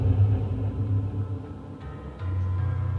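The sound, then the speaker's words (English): Deep, rumbling growls of black-furred wolves in misty forest undergrowth rise and hold steady, then shift as another low, throaty growl takes over toward the end. No one speaks, and the snarling stays loud and constant throughout. “You can hear the growl intensify, met by a second, then a third, as slowly, massive paw pads break through the ground of the loamy earth, crossing through the soil.”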